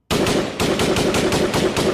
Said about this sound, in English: Those are some gunshots I agree with.